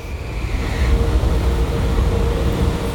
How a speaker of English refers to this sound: The train stops.